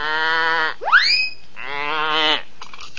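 A goat bleats loudly, giving several drawn-out, wavering calls in quick succession, one sliding sharply upward in pitch. No one speaks.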